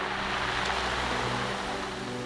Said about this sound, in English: In 1799, a storm surge came crashing over the south coast of Iceland, and a great flood swept over Thuridur's community.